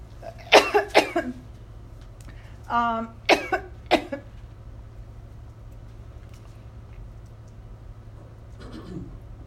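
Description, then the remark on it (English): A person coughs several times in quick bursts, a pair of harsh coughs, then a throaty rasp followed by two more coughs, fairly loud over a steady low hum, with a faint cough near the end. “I'm going to start coughing.”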